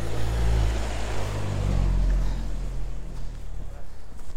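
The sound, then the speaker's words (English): An Audi drives past on a street, its deep engine rumble and road noise loud for a couple of seconds before gradually fading away. “Ah, hang on, let's not get run over by one of the cars that I want.”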